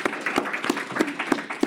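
Applause with steady, evenly spaced claps standing out over a dense, crackling, continuous wash of hand clapping, with no one talking.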